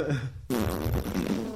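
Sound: fart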